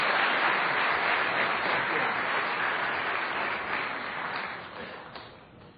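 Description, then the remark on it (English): Sustained applause from an audience welcoming debaters to the stage, a dense steady patter of many hands clapping that stays loud and gradually tapers slightly toward the end, with no voices over it. “Gentlemen, you can just come through the side, and a round of applause once again.”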